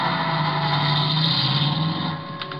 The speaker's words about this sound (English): But when I peeked over the top of the stairs, he was in his car and going.